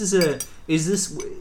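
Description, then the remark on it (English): A spoon scrapes and clinks against a glass while scooping sorbet into it, with two squeaky, drawn-out scoops separated by a brief pause and a light chink at the end. “You filled half the glass with sorbet.”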